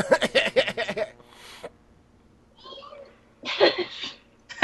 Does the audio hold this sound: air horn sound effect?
no